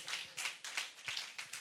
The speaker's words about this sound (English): Oh, let's put our hands together for the Lord. Hallelujah. Oh, clap for the Lord.